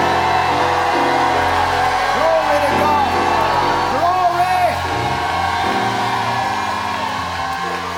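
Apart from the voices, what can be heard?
audience shouting and cheering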